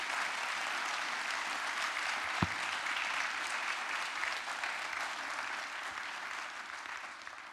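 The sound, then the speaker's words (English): A crowd applauds steadily for people being thanked for their faithfulness and service, a dense wash of clapping that holds at an even, fairly loud level for several seconds, with one sharper clap standing out early on. No voices are heard. “Would you give them one more round of applause?”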